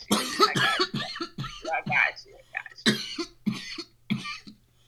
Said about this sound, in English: We are going to light up. And then I always give a warning. I cough a lot. I'm not dying. Do not send the police. I will eventually breathe again.